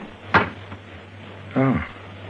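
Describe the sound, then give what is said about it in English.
A cabin door opens with a sharp click of the latch, followed about a second later by a brief creaking groan as it swings, all over a steady low hum. “Come in, Lyme. Shut the door behind you.”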